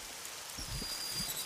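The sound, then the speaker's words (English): Steady rain falls with a continuous bright hiss, joined by soft low thumps and patters of drops hitting surfaces. No voices are heard. “Hey, let's get you guys out of this rain.”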